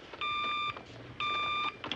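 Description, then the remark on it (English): The bat phone rings twice, two steady half-second electronic bursts with a short pause between them, loud with nothing else around it. “The bat phone.”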